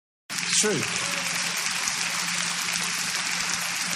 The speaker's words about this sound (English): And they're half-heartedly raising up some applause there for Russell. Way to go, Russell.